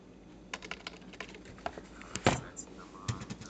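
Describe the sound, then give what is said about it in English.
Someone types on a computer keyboard in quick, uneven bursts of clicking keystrokes, fairly crisp, with a few heavier clacks partway through and no voices. “This message out because now my keyboard isn't working.”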